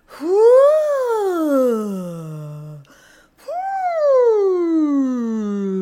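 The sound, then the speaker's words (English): A voice makes two long, smooth imitations of pouring, each gliding briefly upward and then sliding slowly down in pitch, separated by a quick breath, with no words spoken. “How about some pouring noises?”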